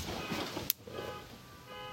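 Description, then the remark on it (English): A car alarm sounds faintly outdoors: a sharp click, then a steady electronic tone holding through the rest of the moment over a low background hum. “Oh, someone is that, as long as that's not our car going off.”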